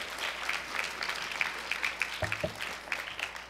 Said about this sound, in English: Let's give her a nice big round of applause.